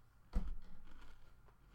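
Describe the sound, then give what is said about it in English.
A crisp bite into a Nature Valley Crunchy Bar, Oats and Dark Chocolate, one sharp crunch followed by a few faint, softer chewing crunches, fairly quiet with no talking. “Are you crunching over there?”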